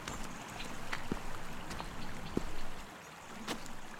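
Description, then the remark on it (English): Steady rushing water flows between river stepping stones at the bottom of Box Hill as someone crosses, a broad continuous wash with occasional brighter splashes and gurgles breaking through. “And you might just be able to hear the sort of rush of the water between the stepping stones as we're going.”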